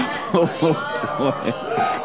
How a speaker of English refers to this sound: Mixed reaction from the crowd there